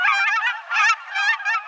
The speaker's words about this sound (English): Still, as October arrives, another voice tells us that some geese have not compromised their migratory ways a bit. You're hearing cackling geese, which sound like a falsetto version of the familiar Canada goose.